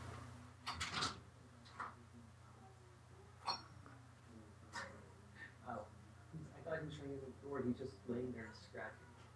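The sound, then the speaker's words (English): A door is opened with a sharp latch click and a few knocks and bumps, with an old dog that had been scratching lying against it, then soft voice sounds over a steady low hum. “I opened the door, and he's laying on his back and stares at me confused, like, hello.”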